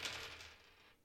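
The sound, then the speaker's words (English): A full set of dice is rolled, clattering and rattling across a hard tabletop, a quick burst of clicking impacts that tumbles and settles within about a second, fairly loud. “Go ahead and roll your full set of dice, and then”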